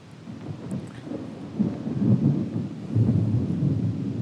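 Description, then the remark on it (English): Deep, rolling thunder rumbles steadily during a thunderstorm with no rain falling, swelling louder partway through and staying heavy to the end, with no voices present. “Even though it wasn't raining outside, just thundering.”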